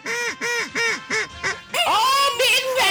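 A squeaky rubber chicken toy squawks five times in a quick honking rhythm, then lets out longer, strained, wavering squeals, loud with no other sounds.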